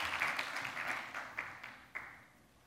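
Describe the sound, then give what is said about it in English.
A church audience applauds together, clapping for the Lord, a dense wash of many hands clapping at moderate volume that gradually thins out and fades, with a few last distinct claps near the end. “Give the Lord a clap.”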